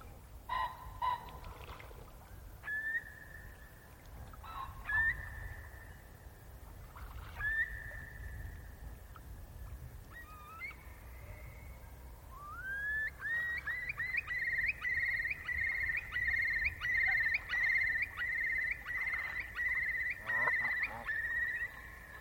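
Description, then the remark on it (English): A curlew calls in slow, rising whistles that swell into a loud, fast bubbling trill, repeated notes tumbling over each other, carried across a faint low rumble of open-air background. “And the curlew song is a perfect introduction to our last guest on this podcast”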